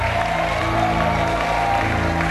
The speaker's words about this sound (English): Okay. Oh, if you are clapping, clap well.